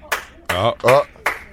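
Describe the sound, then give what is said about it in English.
Two sharp claps, one at the start and one at the end, with a drawn-out vocal sound in between. The voice's tones slide up and down, giving the clapping a theatrical, dramatic feel. “Dramatic clap.”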